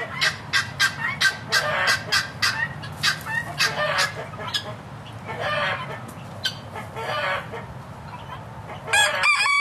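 A flock of chickens on an organic farm clucks in quick, repeated bursts while a rooster crows, with a steady low farmyard rumble underneath and no one talking.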